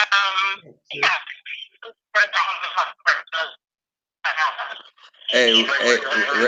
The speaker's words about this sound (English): your phone breaking up. There you go. You sound better now.